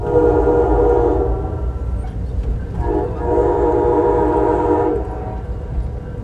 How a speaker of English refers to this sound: it can be incredibly scenic, particularly as the train runs along the coastline.